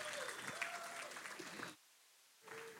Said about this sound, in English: Come on, let's give a clap to the Lord. He is good.